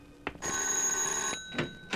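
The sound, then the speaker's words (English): A bell rings in one steady, bright, sustained burst lasting about a second, with a couple of short, sharp clicks or knocks before and after it. No one speaks. “Then I heard the bell.”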